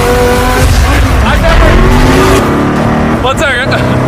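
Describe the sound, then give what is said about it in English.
A powerful twin-turbocharged V8 engine of a carbon-fiber-framed supercar roars loudly as it accelerates hard, its pitch climbing steeply near the end, with a hint of tire noise and voices mixed into the din. “The reason this car is one of the fastest on the planet is because of its twin turbocharged V8 engine, and the fact that its entire frame is made out of air core carbon fiber, making it weigh 500 pounds less than a Lamborghini.”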